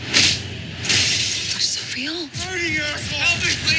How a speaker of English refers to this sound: Wait a sec, you can't just come in here and break the door.